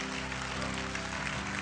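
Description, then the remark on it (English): A crowd applauding steadily, a dense wash of many hands clapping at once with no single claps standing out, holding an even loudness throughout, with a low hum underneath. “Come on, clap.”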